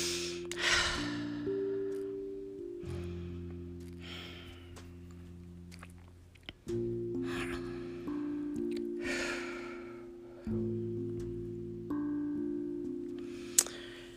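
Slow, deep breaths drawn in and released several times in a steady rhythm, clearly audible over a soft, sustained musical drone, with no talking, as someone with eyes closed takes a few deep cleansing breaths.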